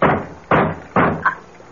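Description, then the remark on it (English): Four loud, heavy knocks on a front door, spaced about half a second apart with a short pause before the last one, each thud ringing briefly. No one speaks. “It sounds like someone at the door. At the front door.”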